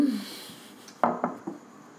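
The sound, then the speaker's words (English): Glasses clinking together in a toast, three quick bright taps in a row, each with a short ringing decay, over a quiet background with no talking. “I'm cheersing.”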